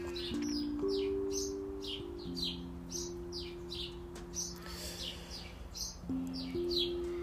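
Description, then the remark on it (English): A busy chorus of birds chirping rapidly and nonstop, many overlapping tweets, with a steady low droning hum running underneath. “Birds are going nuts.”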